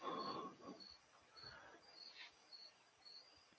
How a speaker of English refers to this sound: Wanted to point out that we were all quiet for a minute and we could literally hear crickets. Oh, that's probably my window.